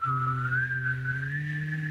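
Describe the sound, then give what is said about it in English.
A person whistles a wavering, gliding tone while humming a low steady drone at the same time, imitating the eerie sound of a theremin. Continuous, with no talking. “Whenever I think about sci-fi, I just start whistling theremins.”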